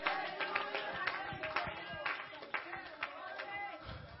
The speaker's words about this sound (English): Somebody clap their hands and thank God that if he don't deliver us, he will go with us.